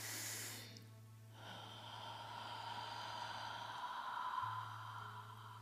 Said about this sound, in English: And now I invite you to take a breath in and breathe into your heart space all of that love, all of that appreciation you just thought of. Breathing in and breathing it through the heart. Breathing in. And breathing it through the heart.